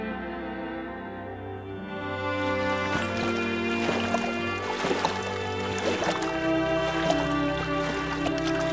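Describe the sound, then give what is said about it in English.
A rowboat glides along a river, with irregular splashes and watery knocks over a steady, low hum. The sound grows fuller after the first couple of seconds and stays moderately loud. “I think we could both use some time on the river.”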